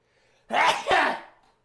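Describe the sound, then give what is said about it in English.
One hard, forceful sneeze by a father: a quick sharp inhale bursting into a loud, explosive release that trails off fast. No one talks. “Fuck, Dad sneezed hard.”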